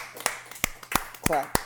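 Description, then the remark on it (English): A group claps for an intern in a slow, steady rhythm, about five sharp, loud claps in unison, with a brief voice sounding partway through. “Clap.”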